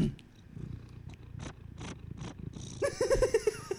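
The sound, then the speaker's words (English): A domestic cat named Skids, a skinny female of about 7 pounds, purrs: a steady low rumbling broken by soft breathy pulses, growing louder and more insistent in the final second. No one speaks. “She says hi. She's a very happy kitty.”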